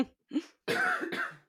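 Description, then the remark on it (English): Two soft throat sounds are followed by a harsh, raspy cough in two quick bursts, fairly loud, with no talking over it; a lingering cough left over from COVID. “Sorry, I've got a bit of a cough.”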